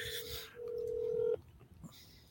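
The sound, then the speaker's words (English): A telephone being dialed to call someone: after a burst of rustling noise, a steady electronic phone tone holds for almost a second, then cuts off abruptly, leaving quiet and soft clicks. “Are you calling him?”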